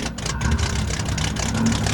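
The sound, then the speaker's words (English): A police officer's car engine runs steadily for a couple of seconds as he cruises late at night toward a cemetery, a deep continuous rumble with a rougher mid-range texture, even in loudness, with no voices. “It was late at night, and he was cruising down in here, and he turned off the motor of his car and coasted in so he could surprise these kids.”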